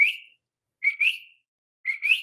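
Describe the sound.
A person whistles an imitation of a coqui frog's two-note call, repeated in clear, fairly loud bursts with short pauses between, the second note rising slightly higher than the first.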